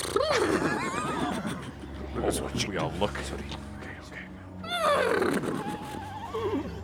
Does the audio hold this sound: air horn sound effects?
no